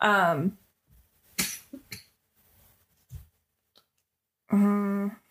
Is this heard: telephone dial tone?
no